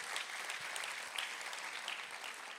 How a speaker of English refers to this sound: Come on, give them a clap and a thanksgiving.